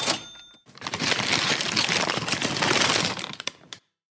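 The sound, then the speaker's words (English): A paper bag crinkles and rustles for about three seconds as cash from a drawer is put into it, a dense, continuous crackle that ends with a couple of crisp snaps, with no voices. “Sir, madam, I'm going to need you to pick all the cash out of the drawer and put it in a paper bag, recyclable preferably.”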